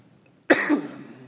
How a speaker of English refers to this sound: Excuse my cough.